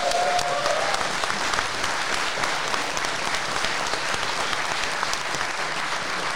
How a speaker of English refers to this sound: It's our favourite one yet. Everyone, give yourself a round of applause. Thank you for being here.